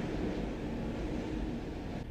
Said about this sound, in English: Again, please excuse the passing by tram.